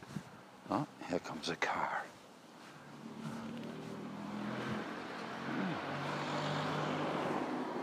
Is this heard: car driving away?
yes